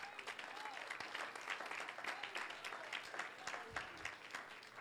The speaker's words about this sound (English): Would you clap to the Lord with me?